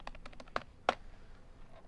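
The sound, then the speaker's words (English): Keys clatter on a computer keyboard in a quick run of light taps, then two sharper, louder keystrokes, followed by near silence. No one speaks. “Great typing.”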